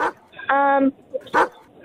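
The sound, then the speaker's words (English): A dog barks a few times: a short sharp bark, then a drawn-out, tonal bark like a howl, and another quick bark after a brief pause. “what dog do you reckon?”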